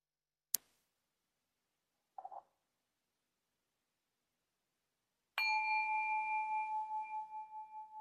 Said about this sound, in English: And I'll start with the sound of a bell.